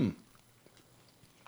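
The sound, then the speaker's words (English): Soft chewing on sticky High Chew strawberry chewy fruit candy, with faint wet clicks and smacks at an uneven pace after a short louder rustle at the start. “These are high chew. Sensational chewy fruit candy or strawberry.”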